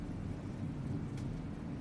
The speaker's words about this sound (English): It's raining out. That was there. Loud as fuck. Yeah, it's thunder and rain.